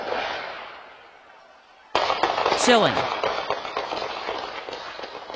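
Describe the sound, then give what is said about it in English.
Recorded by a doorbell camera: after a couple of seconds of muffled background noise, a rapid burst of sharp gunshots breaks out and keeps cracking for several seconds, loud, with a brief shout amid the shots. “And the sounds of gunfire captured on that doorbell camera.”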